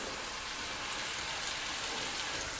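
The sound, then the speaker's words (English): Meatballs being shallow-sautéed in a little hot olive oil in a pan sizzle, a dense, steady hiss full of tiny crackles and pops that holds an even level throughout, with no voices. “And so there's nice, gentle bubbling happening, and that's really what we want.”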